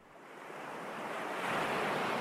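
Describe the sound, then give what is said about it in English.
A steady wash of ocean surf sound effect swells and grows louder over a couple of seconds, a broad hissing roar of breaking waves with no voices present. “This is where we cue the awesome sound effects.”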